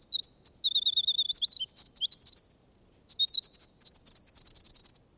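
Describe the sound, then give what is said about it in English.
A songbird sitting on a log pours out a long, varied song of rapid high chirps and warbles, broken by one sustained whistled note, then closing with a quick run of repeated notes. No voices. “And, as it were, clear his throat, but sits there on a log and pours out his music.”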